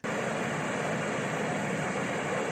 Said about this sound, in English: Have you ever heard of brown noise? Not white noise, but brown noise.